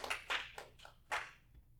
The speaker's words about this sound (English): Everybody give a hand clap to the Lord if you would, please. Hallelujah. Thank you.